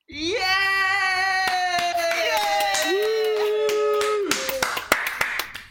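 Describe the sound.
Scattered hand claps ring out beneath a long, sustained whooping cheer from a voice, the clapping growing quicker and more ragged toward the end.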